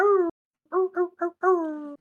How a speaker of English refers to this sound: Sorry, people, you just have to put up with dog barking.